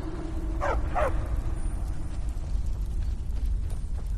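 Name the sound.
dogs barking and whimpering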